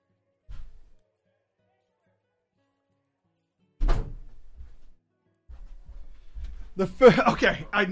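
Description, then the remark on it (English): A single heavy thud of a door shutting lands sharply after a quiet stretch, followed by faint rumbling movement and then indistinct, loud voice sounds. “Somebody at my door, I think.”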